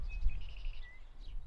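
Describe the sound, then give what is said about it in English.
A flock of birds chirps and twitters together in a steady, overlapping chorus, fairly soft, over a low background rumble with no voices. “How many birds do you think are in there?”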